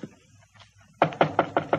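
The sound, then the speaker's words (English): After a second of near-silence with faint low rumble, police officers knock five firm, evenly spaced knocks in quick succession on the door of apartment number 408, fairly loud. “I get the door. Wait a minute.”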